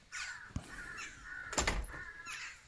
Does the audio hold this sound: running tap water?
no